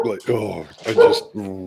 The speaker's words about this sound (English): Ah, the dog. I'm so sorry. I just had to push him out the office because he comes in and he goes, clatter, clatter, clatter, clatter, clatter.